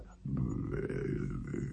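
A low, bubbly stomach gurgle swells in after a brief pause and rumbles steadily for over a second, fairly loud, like water slowly draining from a sink.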